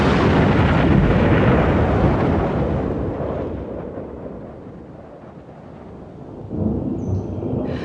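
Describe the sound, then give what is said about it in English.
A heavy storm thunderclap rolls out as a loud, deep roar that slowly fades over several seconds, then swells again in a second rumble, with a constant wash of wind and sea noise underneath. “If by your art, my dearest father, you have put the wild waters in this roar, allay them.”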